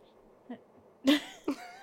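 Three coughs in quick succession, a softer one followed by two louder, harsher bursts, with no talking around them.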